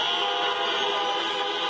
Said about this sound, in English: Biden had a drive-in rally in Iowa, one of the states that he hopes to flip blue. So honk if you want America to lead again.